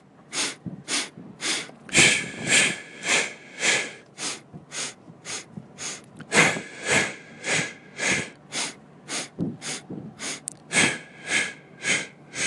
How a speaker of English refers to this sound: So alternating between these two breathings, the maximum breathing, and I don't really have a name for the other one, we'll call it bouncing breathing, I guess.